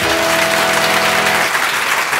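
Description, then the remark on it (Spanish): Audience applause, a dense steady clatter of many hands clapping at full volume, with a held musical tone underneath for the first second and a half. “Un aplauso”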